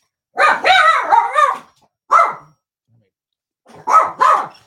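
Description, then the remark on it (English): Chihuahuas bark in sharp, high-pitched yaps: a quick run of several barks, a lone bark after a pause, then two more. The barking is loud, with quiet gaps between. “Damn chihuahuas.”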